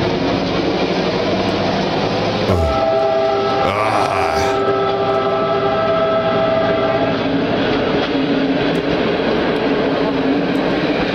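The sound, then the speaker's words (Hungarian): A locomotive chugs loudly and steadily as it gets underway, a dense rumbling churn that runs throughout, with a brief horn-like tone sounding early on. “volt benne egy szép rész, most azt keresem, amikor kicsit megindul. Amikor elkezdett indulni. Ilyen dohogó.”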